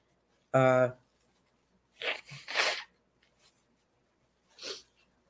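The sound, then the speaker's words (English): A loud sneeze: a short voiced intake followed a moment later by sharp, breathy bursts of air, then a fainter huff near the end. “I don't know if anybody else has allergies in this hot weather.”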